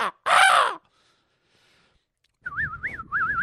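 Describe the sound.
A person mimics a bird: one loud, harsh caw, a brief silence, then a warbling, wavering whistle that rises and dips several times.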